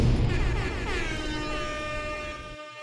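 A loud, blaring air horn sound effect, one sustained brassy blast with a slightly wavering pitch lasting a couple of seconds before cutting off abruptly. No voices.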